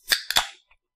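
A skinny beer can pops open with two sharp, bright cracks in quick succession, trailed by a brief fizzing hiss and a faint click, with no voices.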